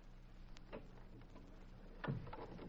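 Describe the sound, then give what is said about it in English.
A door being shut: a light click and rattle, then a heavier, muffled thud as it closes, with no voices. “We better shut this door.”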